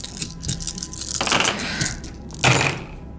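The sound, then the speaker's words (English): A whip snaps through the air in a few sharp, crackling bursts, the last one loudest, with a rattling, hissy texture between them and no voices. “And the sound of a whip snapping in the air.”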